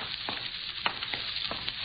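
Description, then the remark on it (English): Water runs in a steady, even hiss, broken by small splashing ticks and brief bursts at an irregular pace. The sound holds at a moderate level throughout, with no voices. “Water's running someplace.”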